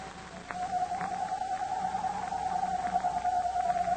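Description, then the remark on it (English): A voice imitates a hoot owl's screech in a radio drama scene set in the shadows near a deserted cabin: one long, wavering, fairly high-pitched cry held for about three and a half seconds over a steady, breathy hiss of sighing wind. “imitating the screech of a hoot owl.”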